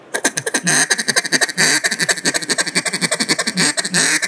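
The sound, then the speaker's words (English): A duck call blown as a fast, aggressive feed chatter: rapid, unbroken clucking pulses running for several seconds, loud, with no talking. “So like a real fast feed, I'm gonna blow that real aggressive.”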